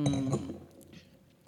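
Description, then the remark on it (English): A bright clink of glasses of Prosecco in a toast rings out at the start, its tone hanging briefly before fading into quiet background noise. Moderately loud, with no talking. “drinking a nice glass of Prosecco. I'm taking a sip.”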